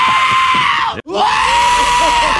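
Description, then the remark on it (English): Two loud, shrill goat screams in a film, one after another with a brief break between them, harsh and strained, filling the whole moment with no talking. “I told myself, I was like, one more scream from these goats, and I can't do it.”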